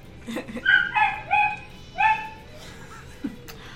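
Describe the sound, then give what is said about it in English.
A dog barks in a quick run of four or five high, yelping barks, clear, then goes quiet apart from a faint low background hum. “Finally, a distraction from the dog.”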